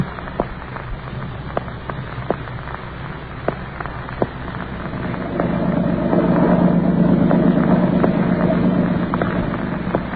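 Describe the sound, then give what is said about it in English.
A steady motorboat engine drones under a wash of water noise as the boat skims over a lake toward the mainland, with scattered splashes and knocks early on before the engine swells louder and holds a low, even hum. “I sit here in the boat as it skims over the lake toward the mainland.”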